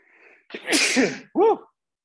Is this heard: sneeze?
yes